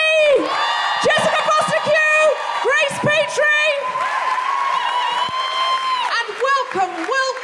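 The audience at The Guilty Feminist Yuletide Anti-Fascist Extravaganza applauds and cheers loudly, with steady clapping beneath high whoops and sustained yells that rise and fall throughout the whole stretch.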